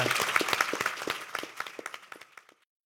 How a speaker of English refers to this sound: And can you keep on clapping for our panel? I think it's been a really interesting conversation.